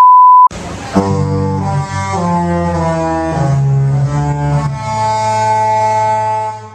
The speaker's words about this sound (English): bell jingle, bam!